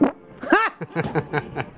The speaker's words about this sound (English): Want to hear me fart? Yes. Do it in the mic.